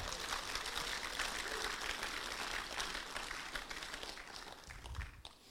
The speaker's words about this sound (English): Come on, we can give Jesus a clap for that.